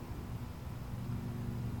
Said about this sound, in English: Okay, I can hear a car in the background, like a motorcycle possibly.